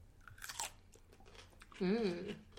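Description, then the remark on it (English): A crisp, wet crunch of biting into a spicy pickle sliced lengthwise, with a few brief chewing crackles, followed by a short appreciative hum from a voice. “I mean, you can have another one after, but just listen to that crunch.”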